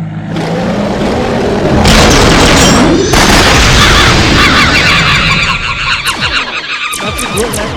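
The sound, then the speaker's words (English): An angry bear roar sound effect, played on stage as a cue that a performer has run over their time: a loud, sustained, rumbling growl with harsh, raspy texture that swells and churns for several seconds before breaking into rougher bursts, with no talking. “Don't go much longer than that, or else you're going to bring out the angry West Hollywood bear.”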